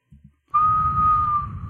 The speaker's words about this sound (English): I whistle into the air.